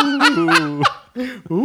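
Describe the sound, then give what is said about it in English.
A person imitates a goose-like ghost noise with a series of nasal, honking squawks, loud, several wavering calls in a row with a brief pause before a final rising honk. “Watch out, Andy. There's a goose.”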